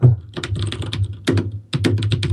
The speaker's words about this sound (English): Listen. Hear that? Yeah. Not as loud. Still pretty loud. It's good. Sounds good. What is it? DOS keyboard.